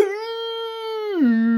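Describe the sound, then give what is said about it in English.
A person imitates an excited dog with one sustained, high-pitched whine that swoops down in pitch near the end. The voice is clear, with no other sounds. “I'm a doggy right now, and so I just like spring like a little cartoon.”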